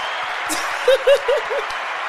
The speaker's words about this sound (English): Finally, we did this. We did it. I know. I'm pretty stoked. Wait, we deserve a round of applause.